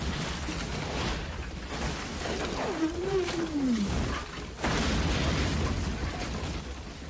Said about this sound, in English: Yeah, every time I was watching like a video essay on this movie, and they pointed that out, and I was like, yeah, every single time it's just like this like weird like wildcat jaguar growl that they put in there every time.